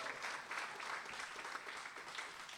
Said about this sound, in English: A big cheer, guys, when they come out. Big cheer.